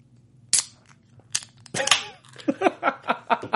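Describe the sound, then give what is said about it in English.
A beer can cracks open with a couple of sharp metallic clicks and a brief fizzy hiss, followed by a run of quick voiced bursts like people laughing or talking. “Can we crack one? Yeah, we can crack one.”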